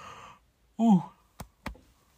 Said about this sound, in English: I'm going to yawn. Hold up.